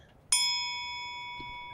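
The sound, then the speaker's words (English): A single bright ding from a small bell, struck once and left ringing with a clear, sustained tone that fades only slowly. It stands alone against quiet background noise. “She rings the bell.”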